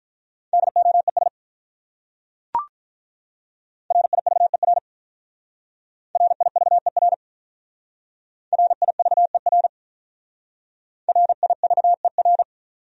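Morse code sent fast at 35 words per minute, spelling common English words: five short bursts of rapid, steady-pitched beeping separated by pauses, with a single sharp click after the first burst and no talking.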